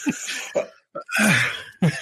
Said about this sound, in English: Yeah, I didn't stop that cough right quick. Dude, I've never been able to suck a cough back in.